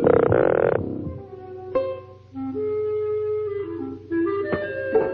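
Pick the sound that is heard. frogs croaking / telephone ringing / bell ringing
frogs croaking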